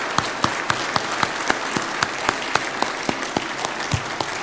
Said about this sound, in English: If you help move, and let's give these ladies a round of applause.